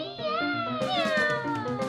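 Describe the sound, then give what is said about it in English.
Cats meow in an alley in a sustained, wavering chorus of overlapping cries, fairly loud, with pitches sliding up and down and no gaps for the whole short stretch. “Some of the coolest cats around like to hang out down in the alley.”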